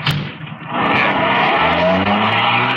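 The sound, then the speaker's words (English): A car engine roars as the vehicle pulls away fast, its tires squealing against the pavement in a loud, sustained screech with no talking. “Here's the car. Let's go. Ben, you drive, huh?”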